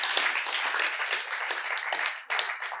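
A crowd applauds steadily for a few seconds, a dense wash of many hands clapping at once, with a brief dip before the clapping swells back up.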